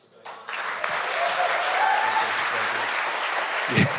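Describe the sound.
An audience breaks into steady, sustained applause that swells quickly after a brief quiet start and holds at a full, dense level, with a few faint voices mixed into the clapping.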